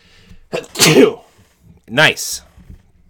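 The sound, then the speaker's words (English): Two loud sneezes, about a second apart, each a sharp breathy burst with a brief voiced edge and a hissy release. “I would have sneezed, so...”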